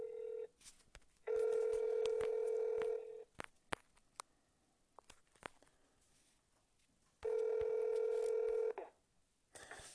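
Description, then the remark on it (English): Telephone dialing tones as a phone call is placed: two long, steady electronic beeps separated by a stretch of short, scattered clicks and blips, fairly loud, with no voices. “In this area, we need you to dial both the area code and phone number so we can complete your call.”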